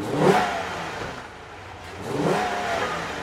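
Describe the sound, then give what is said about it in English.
A black 340-horsepower V8 Dodge Charger muscle car with Indiana plates and an American flag bumper sticker revs twice in downtown Pristina, each loud throaty burst rising and falling with a low idle rumble in between. No one speaks. “A black 340-horsepower V8 Dodge Charger with Indiana plates and an American flag bumper sticker.”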